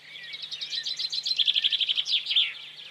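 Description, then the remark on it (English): A person whistles a rapid, high-pitched imitation of birdsong, a continuous string of quick chirps and trills lasting about three seconds, clear, with no talking. “Some fantastic bird impressions there.”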